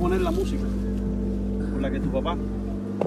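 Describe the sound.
A steady, low engine drone fills the cabin of a moving car, a constant rumbling hum with faint, muffled voices surfacing briefly underneath.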